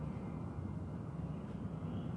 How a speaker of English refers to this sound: hang on, this is another aeroplane.